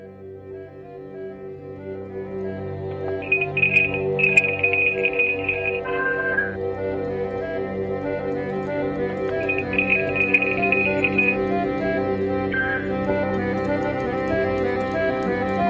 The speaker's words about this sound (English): we've got a phone number that people can phone during the day, and no one will ever answer the phone